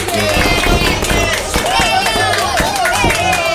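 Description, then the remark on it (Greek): Loud, dense applause from a crowd, steady clapping layered with cheering and high whistles rising and falling throughout, with no clear speech. “Ένα χειροκρότημα παρακαλώ για το θηρίο.”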